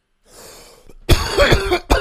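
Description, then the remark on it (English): A harsh, loud cough right up against the microphone, a burst of rough hacking followed by one more sharp cough, after a faint breathy lead-in. “Because in one reality, oh my god, you leaned into the mic to cough like you're John Belushi.”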